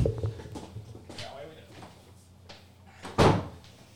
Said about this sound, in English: I'm gonna close this door.